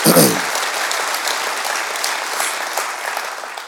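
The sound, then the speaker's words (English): Sustained applause from an audience as an artist is introduced with a gift, a dense steady patter of many hands clapping at once, loud throughout with a brief voice-like burst at the very start. “So, y'all clapping. Okay, cool.”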